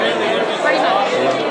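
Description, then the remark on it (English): Dense, steady chatter of a crowd being walked through: many overlapping voices blur into a continuous babble at an even, fairly loud level, with no single voice standing out. “We're going through a crowd right now.”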